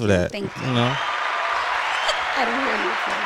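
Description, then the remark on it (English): Steady applause, a dense wash of clapping that holds at an even level for about three seconds, with voices talking over it at the start and again near the end. “Okay, you persevered, and you know, round of applause for that.”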